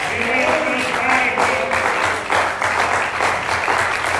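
An audience applauds God steadily for several seconds, a dense, continuous wash of many hands clapping at a fairly loud, even level, with faint voices mixed in underneath.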